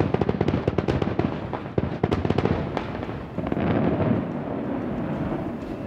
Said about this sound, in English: Isn't it interesting that the last fade of fireworks that echoes is almost like the same fade as the water gets pumped in the air at the Bellagio? You hear that boom that just kind of fades away?